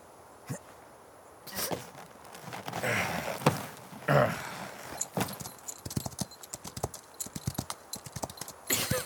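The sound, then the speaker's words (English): Horses' hooves clip-clop in a quick, uneven rhythm as riders set off, the sharp knocks growing denser, with some rustling and scuffing mixed in and no talking. “We need to leave. On the horses, now.”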